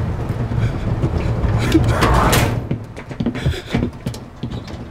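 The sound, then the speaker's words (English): A door slides shut with a rushing scrape that ends abruptly, set against the steady rumble and clatter of a moving train, with muffled voices. “Close the door.”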